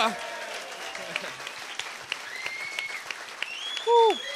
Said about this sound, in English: Round of applause for the crew. Yay.